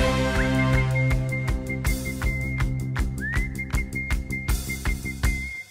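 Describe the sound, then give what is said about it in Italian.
A steady, high whistled note holds one pitch, a single-note song, over rhythmic musical accompaniment with sharp percussive hits, with a couple of brief upward slides. No one speaks. “La canzone mononota ha avuto i suoi antesignani, uno su tutti Rossini, …, …, è anche facile da fischiettare.”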